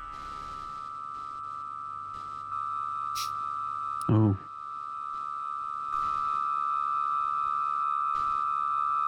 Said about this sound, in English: Spooky ringing noise. Like a horror movie? This is the one where you're like, man, trippy vibes, man.